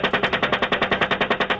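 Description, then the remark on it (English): A sustained burst of rapid automatic cannon fire from a US Apache helicopter gunship firing on civilians in Iraq: about fifteen sharp, evenly spaced shots in under two seconds, loud and harsh, with no voices. “On April 5th, 2010, WikiLeaks gained international fame and shook up the media landscape by publishing dramatic, blood-curdling footage of US Apache gunships mowing down civilians in Iraq.”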